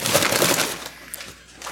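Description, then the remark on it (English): A bag is crumpled, giving a dense burst of crisp, crinkly crackling that fades after a moment into a few faint, scattered rustles. “Oh, yeah, crumple the bag.”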